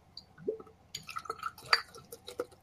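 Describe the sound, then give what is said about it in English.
Abita Brewing Company raspberry lager (Purple Haze, 4.2%) being poured into a glass, heard as quiet, irregular wet glugs and splashes with a brief fizzy crackle, no voices present. “That is a sexy pour.”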